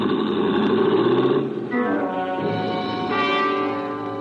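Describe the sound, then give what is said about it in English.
A car engine revs hard and roars off the length of an alley, its pitch climbing in two surges before settling into a steady drive as the car swerves on two wheels into a busy street. Loud, with no voices. “A shock of fire red hair gunned my car the length of the alley and then swerved on two wheels into the busy street beyond and was gone.”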